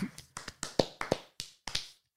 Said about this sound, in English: You get out of time clapping. An out of time golf clap.